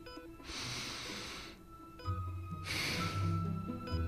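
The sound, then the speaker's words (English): A slow, deep breath is drawn in, followed after a short pause by a long airy exhale, with a soft musical hum underneath. “Take a breath. I'll wait. In fact, I'll do it too.”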